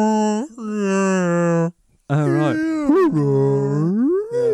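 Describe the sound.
A voice imitates whale song with long, loud, drawn-out moaning calls that slide up and down in pitch, in two stretches split by a short pause, mixed with a brief spoken bit.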